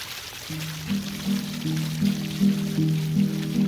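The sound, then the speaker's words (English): Steady cascading water from a 30-metre indoor waterfall in the Cloud Forest Conservatory at Gardens by the Bay rushes and splashes continuously, a soft constant wash of sound, while low sustained musical notes shift slowly underneath. No one speaks. “At the Cloud Forest Conservatory at Gardens by the Bay, the designers chose to go big with a 42-metre cloud mountain and a 30-metre indoor waterfall.”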